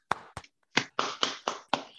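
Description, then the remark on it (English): Hands clap seven times, two quick sharp claps followed by a pause and then five louder claps in a steady, evenly spaced beat, each a crisp slap with a brief ring, clapping for the Detroit Lions finally winning a game. No talking. “Clap it up.”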